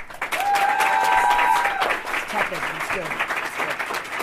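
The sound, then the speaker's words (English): An audience claps and applauds steadily for a few seconds, voting for which contestant deserved to lose the most points for their Star Wars theme, with a whistle rising over the noise at the start and a few voices calling out beneath the clapping. “I'm going to go to the audience, and I'm going to have you applaud for who you felt deserved to lose the most points for their Star Wars theme.”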